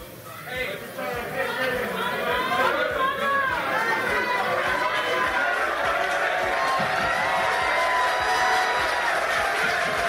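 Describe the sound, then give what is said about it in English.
A large crowd cheers and shouts continuously for a singer as he cries, many voices overlapping into a loud, steady roar with scattered whoops rising above it, sustained for the full length without pause. “You guys can't see this, but … is currently crying and people are cheering him on.”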